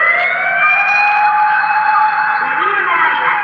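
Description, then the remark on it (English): A dog lets out a long, steady howl that rises and wavers like an ambulance siren, loud, holding the wailing tone for several seconds. “This dog wants to be an ambulance.”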